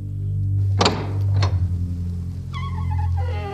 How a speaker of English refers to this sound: "My husband and I live in the small cottage in the field over there," she says, pointing behind the home with one hand as she is opening the door with the other. "Bienvenue," she says to them as the door swings open.